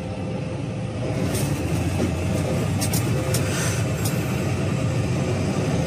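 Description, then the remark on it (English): Steady, loud road rumble and engine drone from a car cruising along a highway behind a semi truck, filmed from inside the car, with a few brief airy whooshes on top and no one speaking. “but we're seeing a truck in the distance, and the guy taking the videos in his car, following along, and apparently he's noticing that the semi driver is doing some weird stuff.”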